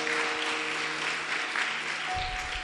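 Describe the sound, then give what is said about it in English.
An audience claps steadily at the close of a church service, a dense crackle of many hands filling the whole clip, with faint sustained organ or keyboard tones underneath and a low rumble near the end. “Please also clap as part of your role.”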